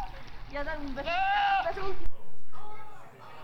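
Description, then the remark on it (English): A goat bleats loudly in a long, quavering cry, followed by a softer, shorter second bleat that trails off. No one speaks over it. “What's the answer? That is a goat.”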